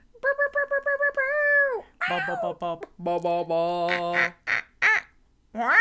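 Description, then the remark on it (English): A person imitates a parrot, with a quick run of nasal, chattering squawks followed by longer strained screeches and a few sharp calls, loud with brief pauses between bursts. “Now you're a parrot.”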